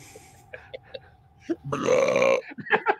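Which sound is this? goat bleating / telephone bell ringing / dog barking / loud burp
loud burp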